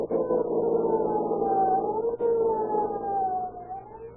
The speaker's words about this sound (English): With a roar and siren screaming, they race through city streets to protect your lives and property.